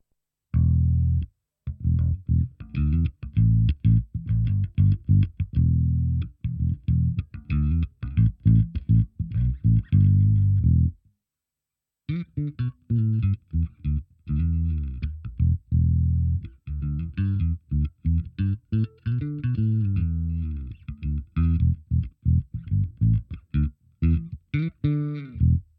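An electric bass with dual humbuckers played through a Cali 76 compressor on a pedal board, a Line 6 stomp, an Aguilar head and an Ampeg 810 cab: a run of punchy, evenly leveled plucked notes, a brief pause, then more quick melodic lines with slides, all instrumental with no talking.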